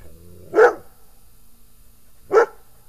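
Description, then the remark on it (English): A dog barks twice, two sharp, loud woofs spaced almost two seconds apart, with quiet in between and no talking. “Are you protecting your cows, buddy?”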